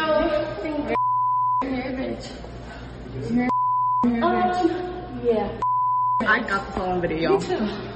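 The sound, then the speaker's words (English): Three steady, mid-pitched censor bleeps interrupt a woman talking in a phone video, each lasting about half a second and fully replacing a slur she says, with talking resuming between and after them. “Every beep is her saying nigger, by the way.”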